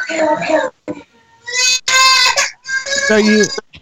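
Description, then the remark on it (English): A child screams in three long, shrill, wailing bursts separated by brief pauses, loud and piercing, with the pitch sliding downward at the end of the last cry. “You blowing your nose, the kid screaming.”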